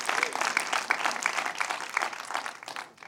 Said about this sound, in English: So give them a hand clap so they can hear you in Nashville.